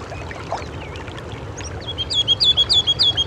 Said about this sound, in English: Hear it? It's a ruby-crowned kinglet. So much energy for this tiny little guy. They're pretty common in the park, so keep your ears open for them.